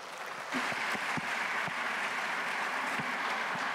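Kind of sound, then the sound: crowd, audience applause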